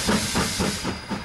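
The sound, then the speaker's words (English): A steam locomotive hisses loudly and steadily, with rhythmic chuffing bursts about every quarter second, as it pulls away from Wellington Central Station at 3 p.m. on December 24th, 1953. It is an express service to Auckland with 285 passengers and crew on board, and no voices are heard. “A reliable steam train departed Wellington Central Station at 3 p.m.”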